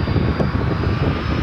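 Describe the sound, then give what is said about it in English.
The loud, steady roar of an airplane coming in low to land and touching down, a broad rumbling drone that stays constant throughout without any voices. “Oh, wait, we're seeing an airplane coming in. Coming right at us. Oh, not very high off the ground. It's touching down.”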